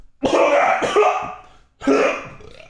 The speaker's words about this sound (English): What happened? There's so many sounds coming out. I know. I don't know if it was actually like sneezing or coughing. It feels like it was an exercise. What? I'm choking on coffee.